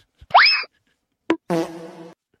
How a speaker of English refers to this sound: If you want, I want you to listen to that sound effect at the very end. That is from the infamous meme where the guy takes the phone in the grocery store, puts it on intercom, and rips a toot into it. That is, listen again. It's good.